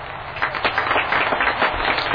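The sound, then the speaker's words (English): A crowd clapping steadily in the virtual world Second Life, a dense crackle of many overlapping hand claps at an even, fairly loud level throughout, with no voices. “Oh, that's people clapping.”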